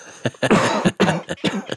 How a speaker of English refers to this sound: We need a cough button.